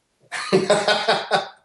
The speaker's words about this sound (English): Well, I know I'll spend the rest of the night coughing, so I'm glad I could do it.